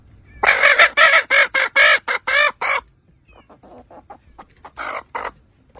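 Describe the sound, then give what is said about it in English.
An Easter Egger hen clucks while being tickled, a loud, rapid burst of about nine pulses, then trails off into softer, scattered clucks and chirps, with no talking. “You ever seen a chicken laugh?”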